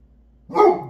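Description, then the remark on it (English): A single sharp, loud dog bark bursts out after a half-second of near silence, then fades quickly with nothing else around it. “The dog just completely broke my concentration.”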